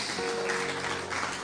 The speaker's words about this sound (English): You can clap him if you like. That's great.